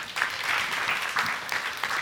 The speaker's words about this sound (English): So now, clap for Jesus.